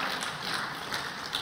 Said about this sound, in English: God appreciates the applause.